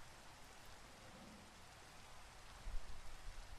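Steady rain falling, a dense, even hiss across the whole clip with a low rumble of thunder swelling near the end. No voices.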